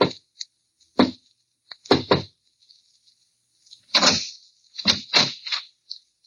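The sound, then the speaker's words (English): Soft, muffled knocking on a door in irregular bursts: a single knock, a quick pair, then a tighter cluster of three, with quiet pauses between and no voices. A man knocks quietly on a door on a deserted cobblestone street somewhere in Europe, in early evening darkness a little past eight. “He pauses, looks behind him, then knocks quietly on a door.”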